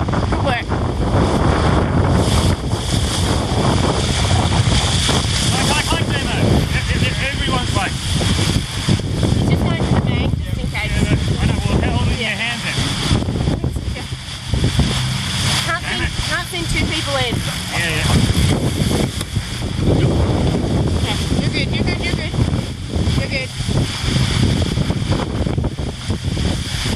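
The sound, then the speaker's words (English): Strong wind roars steadily across a sailboat on a windy day, a loud, continuous rush and buffet filling the whole stretch, with people's voices talking faintly beneath it. “Most important thing on a windy day is to keep your skipper calm, apparently, as a tactician.”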